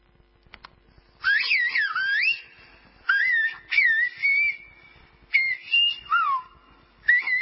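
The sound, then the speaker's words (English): Human whistled speech: a string of clear, piercing whistles that glide and warble up and down in pitch, grouped into several short phrases with brief pauses between them, and no talking. “These are human beings. This is not a bird.”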